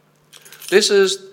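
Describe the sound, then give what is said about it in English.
A brief jingle of metal keys being handled as someone fetches them, with a short burst of muffled voice sounds overlapping the end of the rattling. “can you get my keys?”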